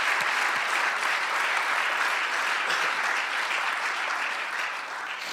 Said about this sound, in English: Why don't we just clap our hands in response of faith? We believe your word, God. We will respond.